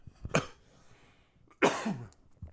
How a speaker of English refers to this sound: Oh, Jesus. That's how we're going to start. We're just going to start coughing. Lovely.